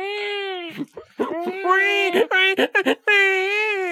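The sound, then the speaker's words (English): A voice imitates a crying newborn: loud, sustained wailing with a few quick breaks and sobbing catches in the middle, alone, without other talk. “At that point, actually, your baby is going to start to cry.”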